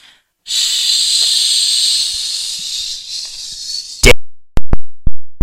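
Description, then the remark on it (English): A shower is turned on to check that the water goes down the drain, running with a steady, bright hiss of spraying water for several seconds, easing slightly before several sharp, loud clicks or knocks in quick succession. “Let's turn on the shower.”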